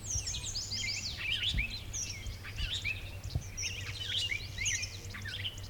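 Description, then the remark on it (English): A busy outdoor bird chorus at Dinosaur: a robin's cheery caroling phrases mixed with a clay-colored sparrow's buzzy notes and squealy, grunty starling calls, with Canada geese in the background, continuous over a low steady rumble. “Okay, we're hearing a robin just doing that beautiful cheery-up, cheerio thing. And the buzzy clay-colored sparrow.”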